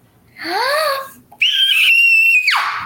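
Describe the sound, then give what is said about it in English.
A person demonstrating how they had screamed lets out two loud, high-pitched screams: a shorter rising wail, then after a brief pause a long, piercing shriek held steady before sliding sharply downward. “Cover your ears. This is how I was screaming.”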